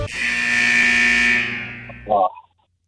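A game buzzer blares a loud, harsh, rasping tone for about a second and a half, then fades, followed by a brief final burst before falling silent.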